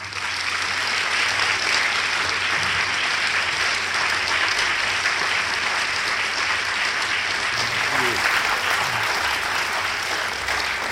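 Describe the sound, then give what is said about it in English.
Sustained, dense applause from a large audience welcoming Natan Sharansky and Michael Douglas, steady and loud for about eleven seconds, a continuous wash of clapping hands with no voices standing out. “Based on your applause, you know these gentlemen, and they're here to tell you about themselves in their own words.”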